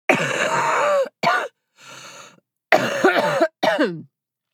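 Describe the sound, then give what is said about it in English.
A person coughs in a series of harsh, rasping bursts, about five in all, loud, with a quieter wheezy breath in the middle and no talking. “That is how I sound when I cough.”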